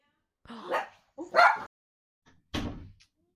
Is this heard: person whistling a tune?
no